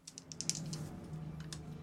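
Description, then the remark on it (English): A handful of dice, rolled for attack damage in a tabletop game, clatter and tumble across a hard surface, a quick run of sharp overlapping clicks over a low steady hum, moderately quiet, with no one speaking. “So many dice.”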